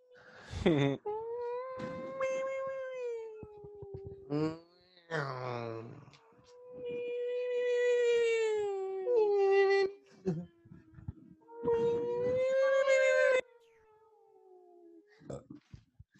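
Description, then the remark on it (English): A person vocally imitates a racing car engine, droning in long buzzy revs that swoop up and down in pitch, broken into several loud bursts with brief gaps and a short final sputter. “What was the race car noise we were doing?”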